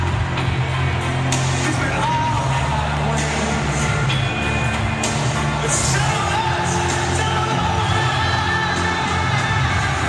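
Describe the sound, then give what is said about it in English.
A dense, steady roar of a sold-out stadium crowd before an Australian Football League (AFL) game as a light drizzle starts to fall, with scattered shouts and whoops rising from the sustained murmur and no single voice standing out. “Sold out crowd in.”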